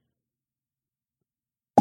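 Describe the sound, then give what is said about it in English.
Silence, then a single short, loud plop right at the end as a water-filled Diva Cup menstrual cup pops off, a dull low-pitched pop with a quick fade. “That's how it sounds when it comes off your cervix.”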